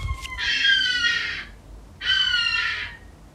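A bird lets out two long, harsh, wailing calls close by, each lasting about a second with a brief pause between them, loud against an otherwise quiet background.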